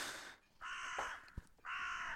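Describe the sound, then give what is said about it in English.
A raven gives three harsh, raspy caws in a steady rhythm, loud, with a short thump between the second and third calls and no talking. “calm, peaceful no, raven.”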